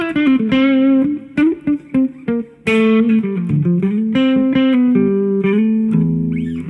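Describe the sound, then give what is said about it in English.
A melodic electric guitar line at a medium gain setting, bathed in a bright, digital plate-like hall reverb, each note's tail smearing into the next; loud, upfront and played alone without any voices. “A lot of people whinge about the reverb because it's digital and it's like more of a platey kind of sounding, hall kind of sounding reverb.”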